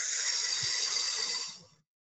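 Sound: slow exhale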